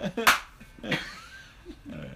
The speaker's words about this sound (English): That's not a good clap. Hope you like this clapping, everybody.